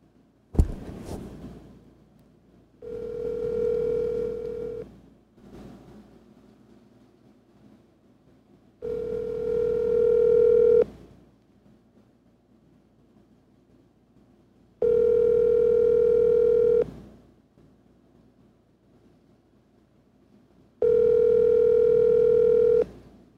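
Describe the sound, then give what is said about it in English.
A phone ringback tone repeats four times, each steady two-second burst separated by a few seconds of quiet background noise, with a brief click at the start, as a call to someone's dad goes unanswered before reaching voicemail. “Should we just answer some advice before we try calling my dad or should we just go for it?”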